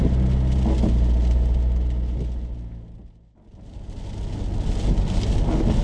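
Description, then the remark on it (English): Heavy rain lashes down with a steady hiss over the low rumble of a car engine while driving to a place in County Limerick, dipping briefly to near quiet midway before the drumming wash and road noise swell back in. No one speaks. “The rain is lashing down. It's absolutely miserable.”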